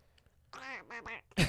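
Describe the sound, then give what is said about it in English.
A person imitates a duck with three nasal, raspy quacks in quick succession, loud, ending in a sharp burst of noise. “You just sound like a duck.”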